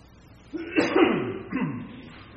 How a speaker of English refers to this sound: So we'll read those two scriptures this morning, and I'm going to clear my throat, hopefully.